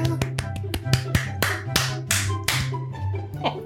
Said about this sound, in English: The golfer clap.